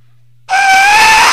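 After a moment of near silence, an Aztec death whistle lets out one sudden, loud, piercing shriek, harsh and breathy like a human scream. It holds steady with a slight upward pitch drift until it cuts off.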